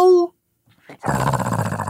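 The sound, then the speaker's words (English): A person imitates a dog: a short, high yelp-like cry, a brief silence, then a loud, rough, sustained growl that runs to the end, with no other sounds. “It lets out kind of a half-hearted yelp before backing off and growling.”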